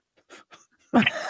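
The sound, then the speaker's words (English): A single sneeze: a couple of soft, breathy catches build up, then one sudden loud, harsh burst of air trails off into a noisy hiss. “God bless you.”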